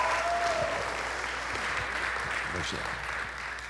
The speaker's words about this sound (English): Come on, give him a great big hand clap of praise.